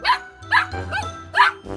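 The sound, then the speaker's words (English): A puppy barks three times in short, high-pitched yaps, fairly loud, with uneven gaps between them and a low background hum underneath. “I wanted to, but I had too much homework, and my parents bought a puppy without my permission.”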